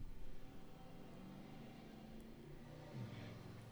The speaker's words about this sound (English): Every time. I feel like it's just like a destiny at this point that all these cars are going to pass by, add a little flavor.